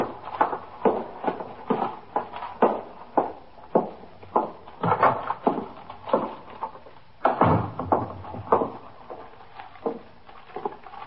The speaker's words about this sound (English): Carrying a paper bag, he walked in the front door of the station house, through the back room, and up the stairs to the 21st Detective Squad.